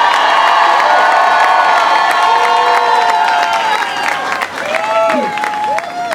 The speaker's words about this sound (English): A round of applause for the 17th president of Texas Tech, Dr. Lawrence Stubeck.